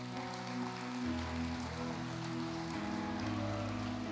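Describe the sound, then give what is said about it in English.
A crowd claps in a dense, steady patter of applause and cheers for God after a prayer, holding for several seconds, with sustained keyboard chords humming underneath and a few scattered cheers. “Let's give a clap and a cheer to God.”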